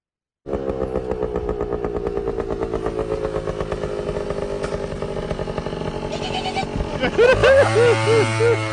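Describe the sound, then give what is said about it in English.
A motorcycle engine rumbles loudly, a steady throbbing idle that swells near the end with a few quick revs as it pulls up beside a car with a man sleeping inside. “I thought he was just gonna rev the engine, but he reaches.”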